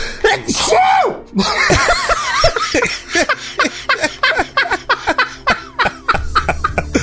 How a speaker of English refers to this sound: I tried so bad to not sneeze as I ended that sentence.